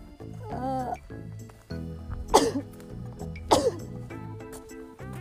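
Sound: sneeze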